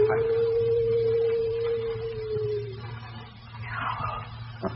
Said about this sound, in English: Only a barn owl. There's nothing strange about that, is there?